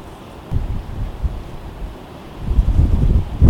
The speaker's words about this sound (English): It's just no good in this wind.